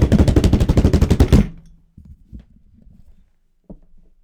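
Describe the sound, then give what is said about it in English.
A loud, rapid drum roll announcing the food of the week, evenly spaced snare-like hits rattling for about a second and a half, then cutting off, leaving a few faint low thumps. “Drum roll for the food of the week!”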